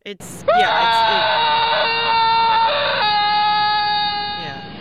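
A single long, fearful scream held at a steady high pitch for about four seconds, dipping slightly lower near the end before trailing off and fading away, as if someone were falling.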